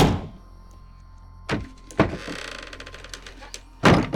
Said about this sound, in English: The door slammed shut.